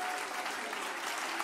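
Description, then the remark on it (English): An audience at a worship service claps together in praise of the Lord in a steady, dense wash of applause, loud and continuous with no pauses, filling the space throughout. “Give the Lord a good hand clap of praise.”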